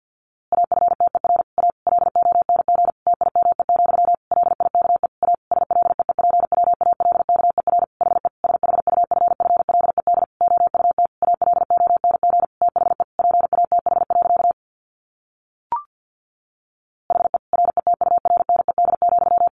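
Fast Morse code at around 50 words per minute, sending the text of the story A Sound of Thunder: a single steady mid-pitched beep keyed in rapid, dense bursts, broken by a brief pause with a click before the tones resume. No voices.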